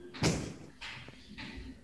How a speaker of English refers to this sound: Oh, my chair's broken.